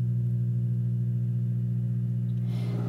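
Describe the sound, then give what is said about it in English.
An air fryer runs with a steady low-pitched hum and layered tonal overtones, holding constant throughout, with a slight rise in breathy noise near the end and no talking. “And here it goes. It's got a nice hum.”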